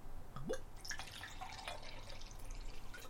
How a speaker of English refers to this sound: All right. Pop the top. Okay. That one doesn't have a whole lot of carbonation on it. Let's do the pour.